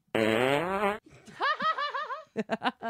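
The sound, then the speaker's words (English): A loud, buzzy fart sound effect played from a website blares for about a second, then stops abruptly and is followed by someone laughing in rising, breathy bursts. “is so over the farting noises.”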